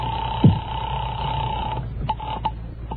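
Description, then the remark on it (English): A telephone rings at a residence in Snohomish, Washington, called by the comedy team Bob and Ray. It rings with a steady, mid-pitched tone that holds for nearly two seconds, then stops, followed by two short clicks. A brief low thump comes early, over a muffled, hissy background. “I think the phone will be ringing. It is now. It's ringing.”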